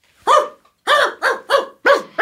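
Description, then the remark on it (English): A dog barks five times in quick succession, loud, with short gaps between the sharp, harmonic woofs. The first bark stands apart, then four come in a steady burst. “I want to introduce you to my dogs.”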